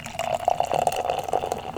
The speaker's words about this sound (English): pouring beer for quite a while. But not into microphones.